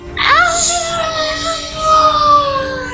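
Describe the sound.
A voice imitates the long, shrieking wail of the shrieking eels, a creature in a tabletop role-playing game: a high, piercing cry that rises sharply, then holds a strained, slightly wavering pitch for nearly three seconds without any words.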